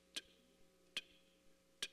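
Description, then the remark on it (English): A watch ticks softly, three crisp, sharp clicks spaced just under a second apart against a faint low hum, with no voices. “But I was sitting at my desk this morning, and I was listening to those ticks.”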